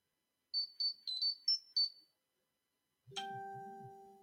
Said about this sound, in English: My phone just going off today.